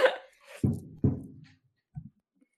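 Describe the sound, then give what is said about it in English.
An abrupt sneeze bursts out, followed by a couple of short, throaty exhalations and a faint trailing breath, with no talking. “Bless you.”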